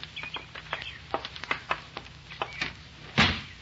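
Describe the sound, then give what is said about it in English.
An unlocked door opens without a key and shuts: a run of quick, irregular clicks and rattles from the latch, ending in a louder, solid thump as it closes. No one speaks. “Open the door quick. Hey, don't need the key. It's not locked.”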